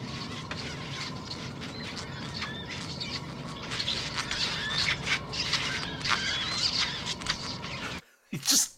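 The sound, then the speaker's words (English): Suckling pups make a dense, continuous chorus of high, squeaky squeals and chirps over a rough, rubbing undertone. It stops abruptly near the end, then returns as one brief squeaky burst. “Suckling pups.”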